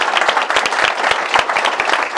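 A crowd applauds steadily to thank the panelists at an Atlantic Council evening panel event, many hands clapping at once in a dense, loud, continuous patter with sharp individual claps popping out of the wash, and no one speaking over it.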